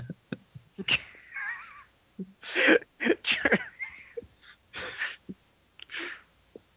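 A series of short, sharp sneezes, several bursts spread over a few seconds with snuffly breaths and faint squeaky sounds between them; no one talks.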